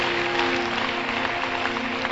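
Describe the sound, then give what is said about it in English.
An audience claps for Jesus during a sermon, in a dense, steady wash of applause that holds at an even level throughout, with a faint sustained tone humming underneath. “Clap for Jesus.”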